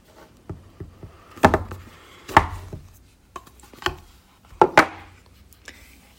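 A small cardboard sleeve that holds a small phone box (about 5 cm high and 6 cm wide) together being slid off: a series of sharp, irregular papery knocks and scrapes, some louder than others, with brief rustling between them and no voices.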